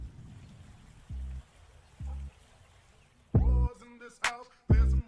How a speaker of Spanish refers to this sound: Pero qué tremenda mansión y tenemos dos estatuas botando agua por ahí.